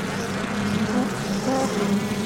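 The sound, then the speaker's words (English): A dense, continuous buzzing hum of many bees swarming, steady and fairly loud with slight wavering pitch throughout, no voices. “That sounds very interesting and weird because it sounds like there's bees swarming all around you.”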